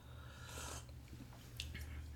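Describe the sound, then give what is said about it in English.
Quiet slurping sips of a hot cup of coffee: a longer airy draw near the start, then a shorter sharp slurp, with soft mouth sounds and low hum between, no talking. “so this is a hot cup of coffee here. I have a very strange trait in that I like my foods piping hot. Scalding. So I'm going to go ahead and sip now.”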